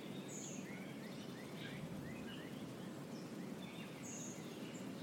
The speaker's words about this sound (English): The birds singing and flying.